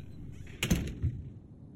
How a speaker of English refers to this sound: So, go ahead and close the door. I'll still hear them.